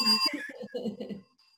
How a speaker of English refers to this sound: Too bad the scoring is over, but we'll give you the bell anyways.